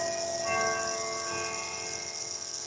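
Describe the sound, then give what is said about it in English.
A grandfather clock chimes, its bell-like tones ringing out and lingering in a steady, shimmering hum with several overlapping pitches. No voices are heard over it. “I don't even have a grandfather clock, dude.”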